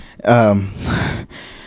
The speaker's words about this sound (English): Now he's breathing hard.